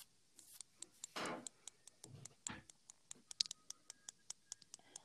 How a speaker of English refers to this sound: You guys like to hear some of my earbuds clicking?